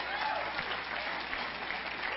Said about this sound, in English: Clap your hands, somebody.